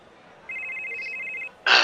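A telephone rings once as a call is placed, a steady warbling electronic trill lasting about a second, followed by a short burst of noise like the handset being picked up. No one speaks.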